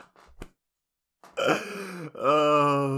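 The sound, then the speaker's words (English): A sharp little hiccup pops out, followed after a pause by two longer, strained, voiced gulping sounds, fairly loud, with a squeaky, almost yelping quality. No speech. “It was a hiccup.”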